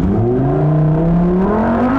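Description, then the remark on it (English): A Lamborghini sports car engine revs loudly, its deep growl climbing steadily in pitch over two seconds, with no voices present. “Cashing in on memes and driving a Lambo”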